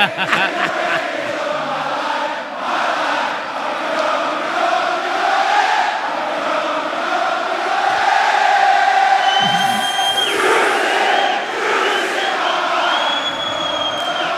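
A wrestling crowd of about 15,000 people roars and cheers steadily during a wrestler's ring entrance, singing along to his entrance song, a dense wall of yelling voices that swells and stays loud, with a few sharp whistles and shouts rising above the din.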